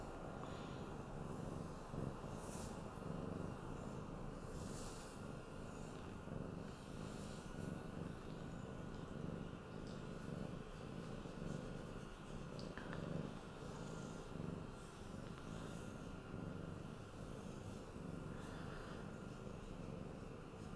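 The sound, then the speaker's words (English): A cat that has just woken up purrs steadily for about twenty seconds, a continuous low rumbling drone with soft rhythmic pulses from its breathing and no voices. “Kitty cat break time.”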